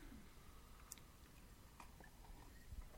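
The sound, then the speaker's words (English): Quiet mouth sounds of someone at home sipping beer, with a few soft wet clicks and a swallow over a low background hush. No one speaks. “Oh, which we just took a sip. That was good.”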